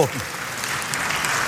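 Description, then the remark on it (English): A church audience applauds steadily as a guest speaker takes Pastor Dwight Nelson's pulpit, a dense wash of many hands clapping at a fairly even level, with a brief voice fragment at the very start. “you clapping for me or for Pastor Nelson?”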